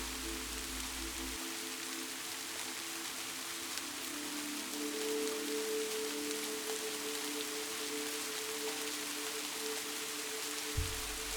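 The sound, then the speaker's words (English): Steady rain patters down in a continuous, even hiss, with a faint low hum running beneath it throughout. No voices can be heard. “You have watched and listened to the rain many times before.”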